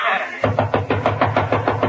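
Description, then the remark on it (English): A rapid, steady series of about nine knocks on a door, fairly loud, starting after a brief moment of near-quiet. “that's probably my lawyer. Let him in. Mr. Burns, before I open the door”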